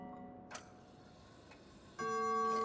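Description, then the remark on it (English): A clock ticks softly, with a sharp click and a fainter one, then a bright, ringing chime striking the quarter hour starts up and keeps sounding to the end. No one speaks. “The quarter was so long that he was more than once convinced he must have sunk into a doze unconsciously and missed the clock.”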